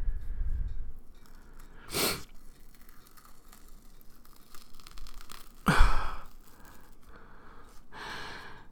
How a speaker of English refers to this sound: I'm breathing hard as fuck because I can't. Clearly, because I can't.